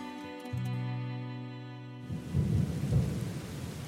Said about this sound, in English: Oh. And now the rain that was forecast has started. Yeah.